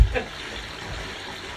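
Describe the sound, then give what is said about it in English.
Water splashes in a bubble bath as someone sits in the tub: a quick slosh at the start, then a steady, soft watery wash for the rest of the moment, with no clear voices. “Why are you in the bath?”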